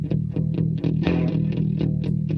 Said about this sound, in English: I mean, let's face it. There's more distortion. More distortion in this song than anywhere else in the album. Yeah. That's the heaviest song on the album.